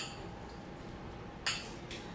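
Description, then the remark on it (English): A bright, glassy clink rings out once, followed about half a second later by a softer second tap, like glasses touching in a celebratory toast. “So cheers. Cheers to that.”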